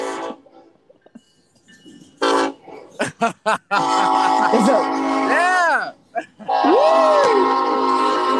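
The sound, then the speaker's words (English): A train rumbles past very close by on a track right beside a building, sounding its horn in long, loud blasts between short bursts, with brief speech in the foreground. “Well, we're literally right on the train track, so hi, sorry.”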